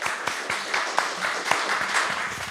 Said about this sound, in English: Yeah, great. Round of applause. Yeah, round of applause.